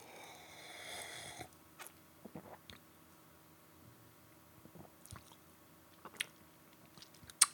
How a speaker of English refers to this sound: There's some tropical-y kind of notes too, but the big thing, it's peachy. Maybe not quite like juicing from sawdust, but it's peachy. All right. Hmm. That's interesting. I need another sip.